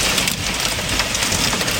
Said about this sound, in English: Hundreds of millimetres fell overnight and we're being warned conditions won't ease for days. When the rain came, it came fast.